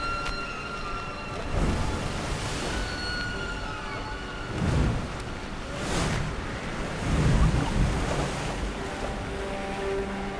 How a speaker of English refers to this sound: One of the loveliest nights I have ever spent at sea was on April 13th, 1970. It wasn't calm, and our little boat bowed and dipped and turned among the high waves left over from a storm.